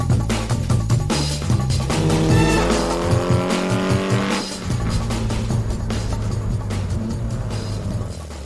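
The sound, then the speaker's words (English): A Porsche 906 Carrera 6 race car engine roars loudly, revving up through rising pitch sweeps before settling into a steady, high-powered drone, with no voices present. “The Carrera 6 was a really important step in the evolution of the Ferdinand Piëch racing program of the late 60s”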